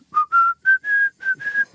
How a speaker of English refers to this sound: You can whistle. I got a lot of hidden talents.